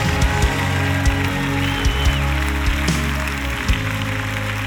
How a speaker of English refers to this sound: Clap those hands and give him praise.